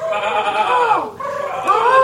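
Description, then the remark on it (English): Two loud, quavering sheep bleats in a forest follow each other almost without pause, filling the whole moment, with no talking over them. “Why is there a sheep in the forest?”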